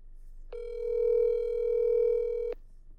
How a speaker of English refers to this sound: All right, let me call this motherfucker. I haven't talked to him on the phone in a long time. Let's see here.